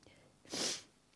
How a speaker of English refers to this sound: Excuse me, sniffing. It's so awful.